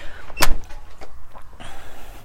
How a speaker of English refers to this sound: We're going to go out front here to the sunny side. It's chilly this morning, but the sun is out, so get back. Make sure that Jackson doesn't try to bolt as I'm going out the door here.